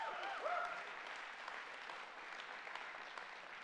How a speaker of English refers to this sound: If that's ever happened to you, give the Lord a hand clap right now.